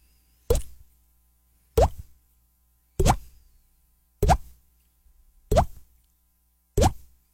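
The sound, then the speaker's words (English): Six hollow, plopping water-drip sounds made with the mouth, evenly spaced about a second apart, each a short bright pop with a quick upward pitch flick, with silence between them. “I have one that you can hear. Okay. But I think anybody can do it, but I'll do it anyway. So, ladies and gentlemen, a drip.”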